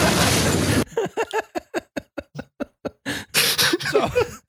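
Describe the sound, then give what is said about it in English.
A burst of loud, hissing noise, then a quick run of rhythmic, clipped vocal pops and rough bursts, like a voice imitating a shotgun being racked and a door blasting open. “If you just hear a shotgun being racked and then your door just explodes, that's keep podcasting.”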